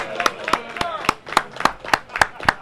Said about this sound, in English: So please, everyone, give me a big round of applause for my boy